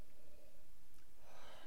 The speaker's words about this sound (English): Really get your nose in there. So you give it a sniff.